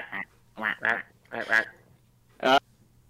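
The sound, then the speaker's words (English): A person imitates a duck, voicing several short, nasal quacks in uneven bursts, with the last quack coming alone after a pause. “Said it quack. Quack.”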